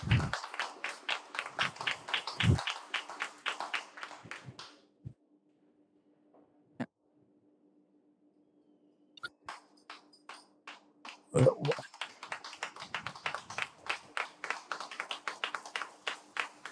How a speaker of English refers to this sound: Can we give her a round of applause for that?